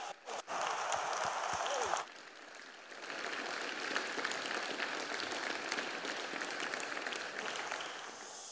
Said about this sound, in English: And what an amazing group of musicians. You are allowed to give them a round of applause. Should we give them a cheer? Hey!